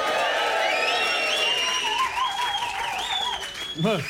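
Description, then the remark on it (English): A large crowd cheers and applauds loudly for about four seconds, a dense roar of clapping with overlapping whoops and shouts that stays steady before dipping slightly near the end, as a live show audience cheers for James Haskell. “Can we have just a cheer for James Haskell?”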